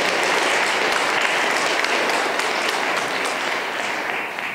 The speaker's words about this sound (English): We thank you for being here, but we thank all of them for all the service they've provided for each one of us, for people at home, and so many people there. So let's give them a great round of applause.